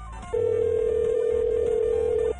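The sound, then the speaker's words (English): A single steady ringback tone of an outgoing phone call hums for about two seconds, clear and even in pitch, then cuts off abruptly, with no voices. “So I need to fix my ringing.”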